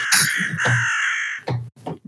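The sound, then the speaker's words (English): Harsh, croaking caws from ravens in a rookery, one drawn-out call followed by two shorter bursts, loud, with several birds seemingly overlapping, no talking. “you know, that segment of A Song of Ice and Fire News, the Rookery, where we go up and check on the Ravens, it's been maybe like, you know, 18, 19 months since we've done that.”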